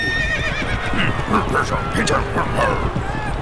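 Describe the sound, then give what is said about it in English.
A horse whinnies over a steady clatter of galloping hooves as it charges in a joust. The sound is loud and continuous for a few seconds. “Hold out your spatula lances as we charge on our horse.”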